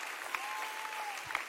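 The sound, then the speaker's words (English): An audience at a worship service claps together to the Lord in a steady burst of applause, dense and fairly loud, with a faint sustained tone running underneath and no one speaking. “Come on, if that's what you want to do, clap your hands to the Lord one time.”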